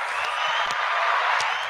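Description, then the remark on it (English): A crowd gives a steady round of applause for hip hop legends such as a rapper being inducted into the National Hip Hop Museum, a dense wash of clapping that holds at an even, fairly loud level throughout, with a few sharper claps standing out. “Where my round of applause at, goddammit?”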